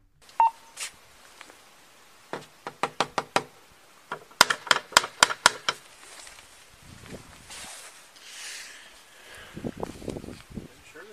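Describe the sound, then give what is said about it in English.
A brief beep as a police body camera's audio starts, then a police officer knocks on a door in two rapid series: about five softer raps, a pause, then six louder, sharper ones. Faint muffled voices and rustling follow. “All right, the body cam point of view that we're getting from this particular officer knocks on the door, then steps away.”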